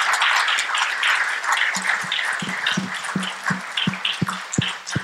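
An audience applauds steadily, a dense crackle of many hands clapping at an even, fairly loud level, with a few sharper individual claps standing out toward the end. No one speaks.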